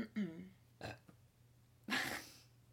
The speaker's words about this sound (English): I ate so many kimchi pickles. I burped. I did it.